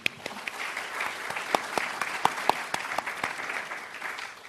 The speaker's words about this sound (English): I want to ask you, well, let's give you a round of applause first.